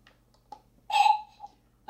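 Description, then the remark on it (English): The "bamf" teleport sound effect that Nightcrawler makes when he teleports from place to place: one quick, airy puff with a hollow tonal core, lasting about a third of a second, framed by a couple of faint soft clicks and near silence. “I chose the sound Banff because my buzzer is blue, and the Banff is the sound that the Nightcrawler makes when he teleports from place to place.”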